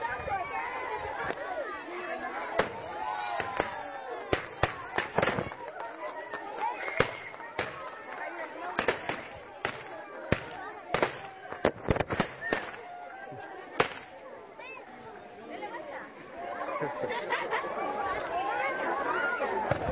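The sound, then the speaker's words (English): Dozens of sharp, loud pops from confetti launchers go off in irregular bursts, some in quick clusters, over a steady murmur of crowd chatter throughout. “But those were like little confetti things that were blasting off and shooting the confetti in the air.”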